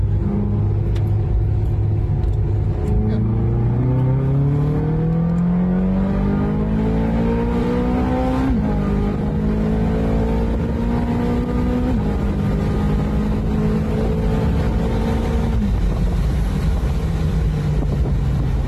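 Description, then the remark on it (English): An open-top car, driven with the roof off, is throttled hard out of a little hairpin bend, its engine note climbing steadily through several gear changes, with loud wind buffeting the microphone throughout. “Gonna throttle it out of a little hairpin.”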